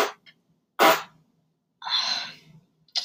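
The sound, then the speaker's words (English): Someone blows a series of sputtering raspberry noises with their mouth, imitating a fart: several short, breathy bursts, the third one longer and hissier, with brief silences between them. “Like a fart. Okay, please stop making that sound.”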